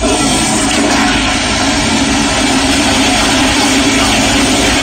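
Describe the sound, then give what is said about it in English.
A toilet in the men's washroom on the main floor of the Covent Garden Market flushes with a loud, steady rush of water that roars on without pause or change for twenty-one seconds, a broad hissing torrent with a low rumble underneath. “Twenty-one seconds of water flushing in that thing.”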